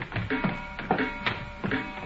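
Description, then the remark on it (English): Wooden stairs creak and squeak under a steady series of footsteps, each step bringing a short groaning squeal, fairly quiet, with no voices. “I wish these stairs didn't squeak so.”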